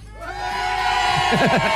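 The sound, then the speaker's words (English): A crowd of children in Mullingar gives one last big Christmas cheer, loud in one sustained burst, high-pitched shouts and whoops blending into a steady roar, with a few voices rising in wavering squeals near the end. “Okay, Mullingar one big cheer.”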